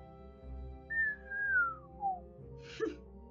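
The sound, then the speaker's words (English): Someone whistles a short comedic chase-style tune, like Benny Hill show music: a few clear, high notes that glide downward, followed by a brief noisy burst, with no talking over it. “I feel like the beginning of this adventure deserves some Benny Hill music, so...”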